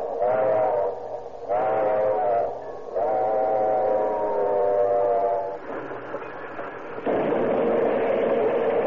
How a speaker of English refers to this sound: The alert eye of the engineer caught a peculiar gleam on the rail ahead. A piercing shriek from the engine whistle split the air.